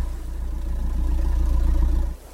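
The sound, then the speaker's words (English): A landing craft engine idles with a deep, steady low rumble and faint rhythmic chugging for about two seconds while heading for a beach, then abruptly dies and does not restart, leaving only a quieter hum. “Damn it, the engine died.”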